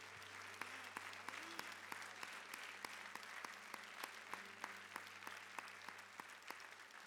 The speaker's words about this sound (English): Put your hands together and give the Lord a great round of applause. He's worthy.